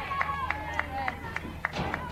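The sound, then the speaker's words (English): Steady, evenly spaced claps ring out over a murmuring crowd, like a stadium audience clapping along in rhythm for a player during the bottom of the second inning of a game at Stewart's Creek, moderately loud. “Hey, let's clap it up for Sam Whitwell.”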